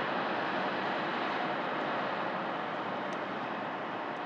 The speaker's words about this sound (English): Heading north on the waterfront, we passed the Morrison Bridge as it was lowering one of its two draw spans to accommodate passing boats.